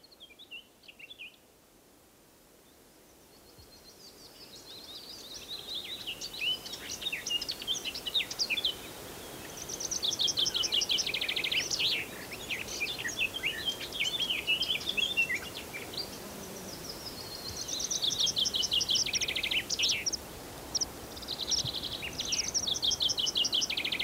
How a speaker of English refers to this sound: The birds are still putting in quite a performance here. We've got meadowpipits in the sky around us, and this common sandpiper is still making noise along the edge of the lake.